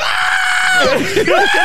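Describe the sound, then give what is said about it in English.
A loud, high-pitched excited scream holds steady for a moment, then breaks into swooping, wavering shrieks, like a voice imitating frenzied fans at a concert. “Just screaming for no reason.”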